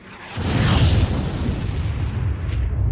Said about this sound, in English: The entire crew is pushed back by the force of the explosion.